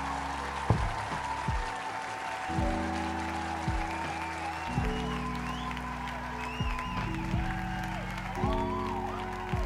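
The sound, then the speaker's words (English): Steady audience applause runs throughout, a dense wash of clapping layered over loud sustained low musical tones that shift pitch every couple of seconds. “We'll make us everybody applaud us.”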